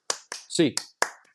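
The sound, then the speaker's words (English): Four or five sharp hand claps in a loose rhythm for the UCLA eight clap cheer, counted from one to eight, bright and crisp, with a short voiced shout landing between the middle claps. “Eight clap time, baby.”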